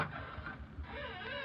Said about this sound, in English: I rang the doorbell. The door opened slowly.